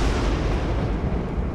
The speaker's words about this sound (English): What's that noise? Oh, that's thunder. That's God. The gods are angry when you hear that.